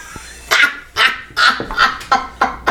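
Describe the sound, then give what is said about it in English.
An old bird dog barks repeatedly in quick succession, about seven sharp, fairly loud barks in an uneven rhythm, with no one talking. “Shout out to my old bird dog.”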